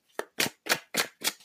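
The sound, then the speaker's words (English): Cards being shuffled: five quick, papery bursts of rustling and flicking in a steady rhythm, each about a third of a second apart, with no talking. “Who else is a Capricorn while I shuffle?”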